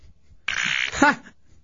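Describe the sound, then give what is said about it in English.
A fart sound effect plays over a phone line: a sudden, loud sputtery burst followed by a brief buzzy tone that drops in pitch, lasting about a second, with no talking. “It's just a fart.”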